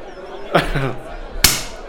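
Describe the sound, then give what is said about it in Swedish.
A bottle cork pops out with a single sharp, brief burst, fairly soft rather than a loud bang, preceded by voices and an exclamation; the bottle itself is twisted rather than the cork. “Och sen så är det så att du vrider inte på korken, det vill säga ollonet. Det gör bara ont. Du vrider på själva flaskan.”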